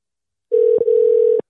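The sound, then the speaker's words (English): A single steady electronic phone tone, like an outgoing call ringing, sounds for about a second at fairly loud volume, with a small click partway through and no voices. “It's ringing on the thingy that we use for the podcast.”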